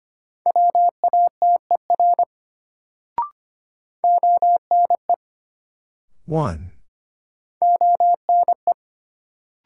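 Morse code at a fast 25 words-per-minute pace, sending sentences built from the top 100 words in a new-word drill: a steady mid-pitched beep keyed into quick dots and dashes, in three bursts separated by pauses, with a brief swooping noise between them.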